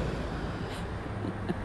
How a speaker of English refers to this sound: I'm going to make sure that I'm going to wait for this truck to go by.